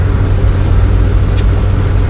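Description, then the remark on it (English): A car drives steadily through the rain on the way back home, its heavy low engine rumble under a constant wash of hiss, with one brief sharp high tick partway through. No one speaks. “And now I'm driving through the rain on my way back home.”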